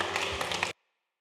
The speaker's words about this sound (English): In Jesus' mighty and wonderful name, and everybody said, come on, let's give God a mighty hand clap this morning.